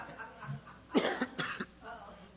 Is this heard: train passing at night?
no